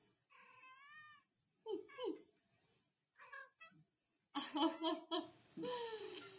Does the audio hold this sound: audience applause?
no